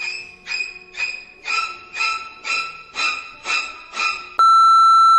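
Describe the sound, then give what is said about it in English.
Eight evenly spaced, bark-like yelps in a steady rhythm, followed by a loud, sustained electronic answering machine beep on the Soul Food Studios International answering machine that holds flat until the end. “Please leave your name and message after the beep.”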